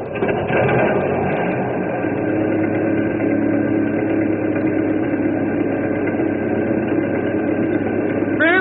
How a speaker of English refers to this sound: I'll crank up this old engine, and we'll cross over and kick them out.